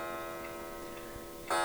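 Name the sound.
clock ticking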